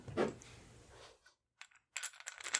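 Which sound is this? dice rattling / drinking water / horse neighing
dice rattling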